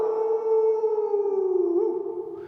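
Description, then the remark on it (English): A human voice imitates a wolf howl, a loud, sustained 'owww' held steadily for a couple of seconds, drifting slightly downward in pitch, with nothing else behind it. “What does the sales wolf say? And I'm like, ow.”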